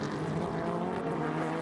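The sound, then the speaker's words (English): A race car engine roars loudly and steadily, a dense buzzing whine held at a constant pitch for a brief moment, with no voices. The car, Tom Blomqvist's in fourth position, is coming past a Corvette to cross the line, heading down towards turn one. “Fourth position for Tom Blomqvist as he comes past the Corvette, dives down past us to cross the line now, down towards turn one.”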